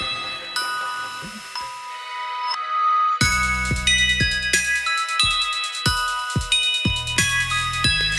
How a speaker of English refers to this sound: I can't help but sing your name when I hear this chiming music.